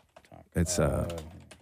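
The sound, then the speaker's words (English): A few quick, fairly soft taps on a computer keyboard as someone types a search for the hashtag Rogers outage, followed by someone talking loudly over the keystrokes. “Hashtag Rogers outage. No. I'm not clicking enter.”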